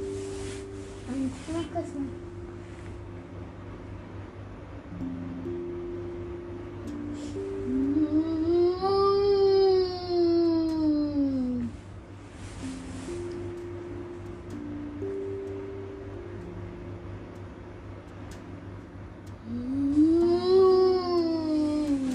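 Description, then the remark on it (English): A child imitates Baby Bowser's yawn twice, each a drawn-out voiced sound that rises in pitch and then sinks, the second one shorter, with a low steady hum underneath. “That's how he yawns.”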